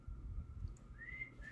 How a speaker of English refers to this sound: Okay, I can't even whistle.